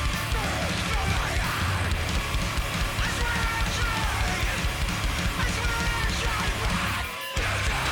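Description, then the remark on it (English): Loud, dense heavy band music with harsh screamed vocals over pounding drums and distorted guitars, sustained throughout with a brief dropout near the end. “But it sounds like they're just screaming.”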